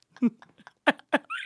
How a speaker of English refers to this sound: one of the co-founders of HeadGum just came in with his dog and interrupted